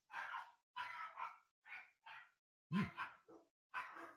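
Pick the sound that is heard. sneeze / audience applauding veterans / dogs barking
dogs barking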